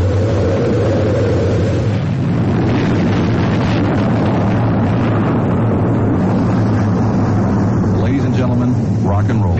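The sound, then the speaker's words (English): A rocket's main engines roar at main engine start in a loud, steady, deep rumble that fills the whole clip without letting up, with a countdown voice faintly audible beneath the thunderous noise. “7, 6, 5, 4, we've gone for main engine start. We have main engine start.”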